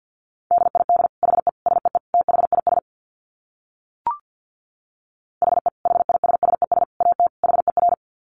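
Very fast Morse code at around 50 words per minute: a single steady-pitched tone keyed in rapid clipped beeps, two long bursts separated by a short pause with a faint blip.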